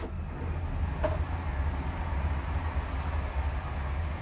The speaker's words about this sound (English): That was a lovely train making an appearance. We love a good train.